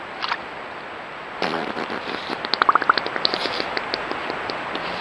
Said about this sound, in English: Well, you know that age-old question, do beavers fart in the woods? Well, we have proof. Here you go.